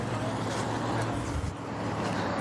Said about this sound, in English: We're crossing the street here on 305. Traffic's starting to slow down from the ferry exit.